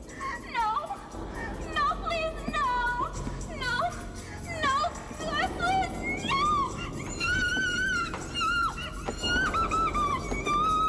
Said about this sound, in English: And then he just opens it and she's like, oh no, don't kill me. And this is the scream that she lets out when he finds her.